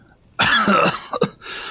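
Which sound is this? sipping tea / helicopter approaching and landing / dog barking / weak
weak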